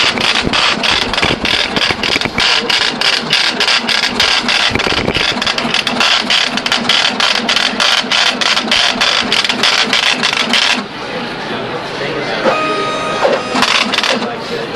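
A braille translator embosser, in a mode that embosses braille and inkjet-prints at the same time, hammers out a business card with loud, rapid, evenly spaced punching strikes for about eleven seconds, then drops to a quieter mechanical whir with a few faint tonal beeps.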